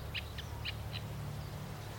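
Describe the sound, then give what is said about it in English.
A reed warbler sings four quick, chirpy notes in the first second, then falls quiet, over a low, steady background rumble, on a grey day threatening rain. “Oh, this is a reed warbler singing now.”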